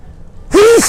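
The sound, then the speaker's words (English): A single sudden sneeze bursts out after a near-silent pause, loud, with a brief voiced tail that bends downward as it ends. “Bless you.”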